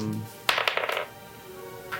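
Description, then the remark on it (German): Dice clatter across a hard table, rolled for a Perception check for the character Isaac, in a quick burst of four or five sharp clicks lasting about half a second, followed by near silence and one faint tap. “Ich würfel für Isaac mal einen Perception-Check.”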